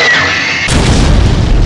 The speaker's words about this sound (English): They're getting away. Fire the bazookas.